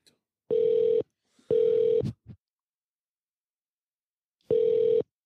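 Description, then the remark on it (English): A telephone ringback tone on an outgoing call to Stanley County Animal Protective Services: three steady, buzzy rings of about half a second each, with a long pause before the third, clear with faint clicks between. “Oh my god, it's ringing.”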